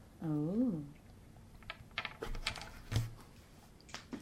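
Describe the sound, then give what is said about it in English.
A brief sliding vocal exclamation, then a series of sharp, irregular clacks and rattles as dice are rolled on the mic and tumble and bounce across a hard table surface, moderately loud. “Oh, dice on that table. I am, because this is an important role, so it should be on the mic.”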